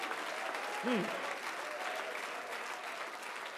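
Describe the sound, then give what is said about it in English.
An audience claps steadily in a dense, continuous wash of applause, praising God, with a single brief shouted voice rising and falling near the start before the clapping carries on. “Why don't you clap your hands one more time and shout unto him with the voice of triumph, for he's a mighty good God.”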